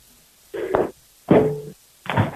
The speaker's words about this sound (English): Letty may have dropped the phone along with maybe some pots and pans and some other things.